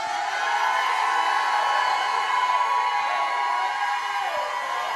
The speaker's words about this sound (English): Come on, come on. Jump up and shout like you've never shouted in your life.